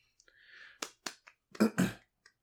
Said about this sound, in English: claps. Yeah. You give them props.